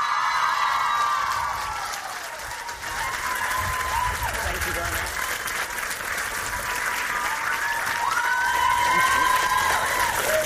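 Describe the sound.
A crowd cheers and applauds steadily for about ten seconds, dense clapping mixed with whoops and high shouted voices, loud throughout with a brief dip before swelling again.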